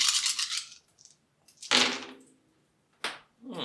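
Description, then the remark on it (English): Seven dice, rolled for sixes in a game, rattle and clatter across a hard surface in several bright, scraping bursts separated by short pauses, the loudest at the start and another sharp tumble midway. “That's seven dice then.”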